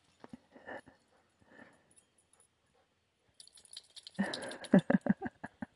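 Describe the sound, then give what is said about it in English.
A part-wolf female dog scuffles and plays, with a few soft snuffles at first, then a busy burst of rattling, jingling movement and short whimpering whines toward the end. “I've been trying to train her, like, little by little to hang out near the house more, and when she's off leash, so she just learns to, like, be a good dog and hang out.”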